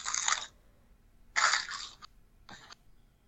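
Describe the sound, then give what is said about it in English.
Three crisp crunching bites, the first two long and broad, the last shorter, with quiet pauses between as someone chews Dairy Milk hazelnut cream chocolate candies. “I've been eating Dairy Milk hazelnut cream candies.”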